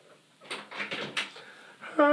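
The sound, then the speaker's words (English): A few soft, scuffling knocks and rustles of a door being opened or shut, followed by a person starting to speak right at the end. “I think he might be looking outside the door.”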